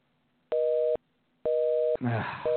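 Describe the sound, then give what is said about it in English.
A phone call to a Blockbuster video store goes unanswered: the line tone sounds in short, steady electronic pulses, repeating about every second, loud, with a brief burst of talking between two of the beeps. “if they are still open, they're very slow to get to the phone.”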